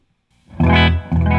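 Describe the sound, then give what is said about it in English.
A Les Paul electric guitar through an overdrive pedal rings out two loud, gritty chords, the second struck shortly after the first fades slightly, with no voices present. “So let's check it out with a Les Paul. All right, I'll try it on the same setting since we're right here with this one.”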